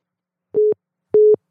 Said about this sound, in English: And tell me if this sounds like a phone hanging up.